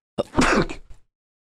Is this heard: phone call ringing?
no